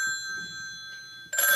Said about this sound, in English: Oh, my phone.